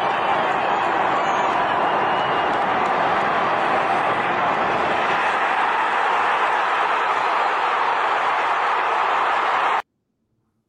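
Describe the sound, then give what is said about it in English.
A stadium crowd roars at Jair Alexander's interception of a Dak Prescott pass, in a loud, continuous wall of cheering for nearly ten seconds, holding steady before cutting off abruptly into silence. “Happens quick, but listen to the crowd on this one.”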